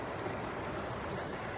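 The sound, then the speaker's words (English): Water pours in a steady, continuous rush, a hissing splash that holds evenly for a couple of seconds with no voices, as water is poured for Rocky, a pet. “Let me get Rocky some water here.”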